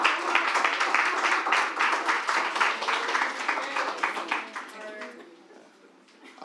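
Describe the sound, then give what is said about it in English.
A short burst of enthusiastic applause from a small group clapping for the producer, dense overlapping claps for about four seconds before thinning out and fading. “Y'all clap it up for the producer right now.”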